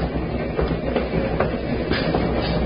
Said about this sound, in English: The wheels of the train must have been listening to what that woman said, because they repeated it. A murder.